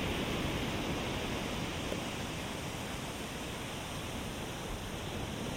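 Ocean waves make a steady, continuous rushing wash, full, with no distinct individual breakers or pauses and no voices.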